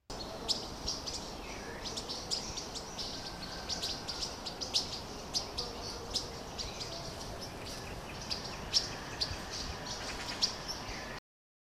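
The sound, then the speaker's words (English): A yellow-rumped warbler's rattling twitter: rapid bursts of high, thin chips repeating in quick runs over a faint outdoor background hiss, with no voices. “And they can also make a rattling twitter that sounds like this.”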